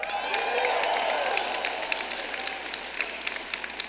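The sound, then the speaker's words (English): A crowd claps and cheers loudly, dense applause with whoops and shouting voices on top, steady for a few seconds before gradually thinning out toward the end. “And being raised by a mother who would clap me up just like that if I opened the door for an old lady,”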